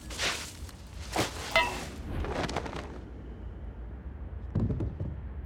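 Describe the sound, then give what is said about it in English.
A series of airy, rushing windmill whoosh sound effects from a story's sound design sweep past in quick succession over the first few seconds, then fade to a low rumble before one more softer whoosh near the end. No one speaks. “So that whoosh that you hear, go back to the session real quick, Michael.”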